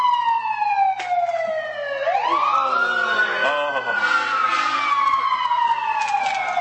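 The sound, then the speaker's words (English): A loud emergency siren wails, its pitch sliding down, then sweeping back up and gradually falling again as it passes, with faint traffic rumble underneath. “Wait for the siren to go by.”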